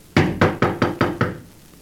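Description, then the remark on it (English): Six firm knocks on the wooden door of a house in a quick, even rhythm, loud, followed by a moment of quiet with no voices. “You going to knock?”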